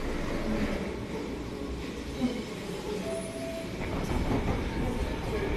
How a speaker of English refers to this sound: We're on a very noisy Mersey rail train on its way to Egbeth, which is a suburb of Liverpool, just sort of outside the middle,